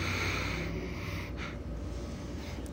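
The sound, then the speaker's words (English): A few short sniffs drawn in through the nose as someone smells a robust finishing olive oil, over a steady, noisy background, with no one speaking. “So have a smell of this one.”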